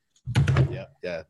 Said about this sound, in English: sorry about that. I dropped my phone on the desk